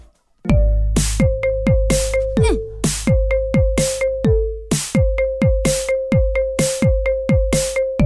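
A pop song plays as a phone ringtone, with punchy electronic beats, snappy hand-clap hits and a synth hook repeating in a steady rhythm, loud and close, with no talking.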